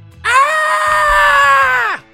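A single piercing, high-pitched shriek from one voice coming from a kitchen, held steady and loud for nearly two seconds before cutting off with a quick downward slide, over faint low rumbling.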